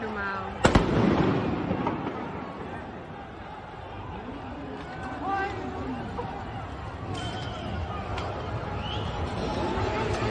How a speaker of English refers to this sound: there's riots. There's police cars on fire. There's people swarming the cops. There's explosions. There's gunfire.